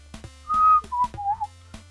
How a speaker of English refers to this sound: I taught myself to whistle in like sixth grade, but I taught myself how to do it wrong. So like in order to whistle, I have to like wedge my tongue between like two like of my molars, basically on my left side of my mouth.